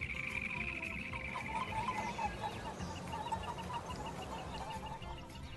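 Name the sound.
wild turkeys gobbling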